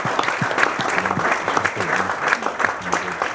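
A crowd breaks into steady applause, dense overlapping claps forming a loud, continuous wash with a few murmuring voices mixed in underneath.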